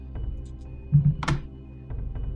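Dice clatter onto a hard table: a couple of dull knocks followed by a brief, bright rattle as they tumble and settle, over a low steady hum with no voices.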